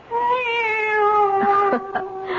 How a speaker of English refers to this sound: Oh, no, no. It's the cat. She's back.